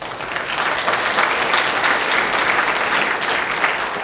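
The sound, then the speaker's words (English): A comedy show audience applauds steadily for about four seconds, answering by applause how many have been to a comedy show before: a dense wash of many hands clapping at an even, fairly loud level with no talking over it. “So by round of applause, how many people have been to a comedy show before?”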